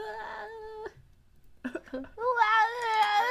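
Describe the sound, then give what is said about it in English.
A person imitates a cat with drawn-out, whiny meows: one long mew, a brief pause, a few short choppy mews, then a louder, sustained wail. Fairly loud. “Fine cat noise.”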